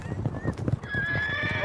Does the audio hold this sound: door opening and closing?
no